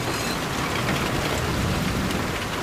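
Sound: heavy rain pouring down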